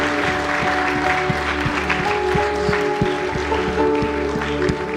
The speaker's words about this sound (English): Would you give a hand clap of praise to God today? Thank you.